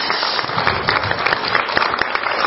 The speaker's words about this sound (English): So, first of all, let's give Jeff a round of applause for coming here tonight.